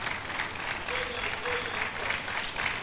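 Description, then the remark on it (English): An audience claps steadily to welcome a visiting church group from La Nkwantanan, a dense, continuous wash of many hands at moderate loudness that holds evenly for about three seconds, with no voices standing out. “Oh, are you clapping for them? It's a type of welcome.”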